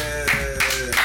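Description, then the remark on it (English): Three sharp, evenly spaced hand claps ring out over a steady, droning tonal background, each clap a quick bright smack about a third of a second apart. “Clap it up.”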